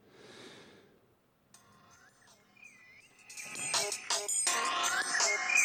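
A phone ringtone plays, starting as a thin electronic melody and swelling into a loud, dense, warbling ring that keeps going without any talking.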